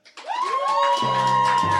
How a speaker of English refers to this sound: So, please applaud for the character you think would win. Do you think it would be Predator?